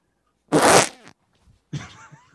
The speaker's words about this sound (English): That was not very churchy. That was, yeah, no. That was... Because every time you try to fart in church, it's loud as fuck and it slaps the wood.